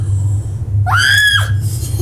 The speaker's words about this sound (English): Here, yeah. This is how I'm going to scream.